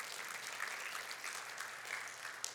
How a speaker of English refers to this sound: Yeah, that's a good place to clap.